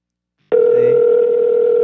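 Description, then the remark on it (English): A loud, steady telephone tone of an incoming call cuts in abruptly after a half-second of silence and holds one unwavering electronic pitch with a faint higher overtone until the end, with no voices. “We ain't got a caller. They calling us.”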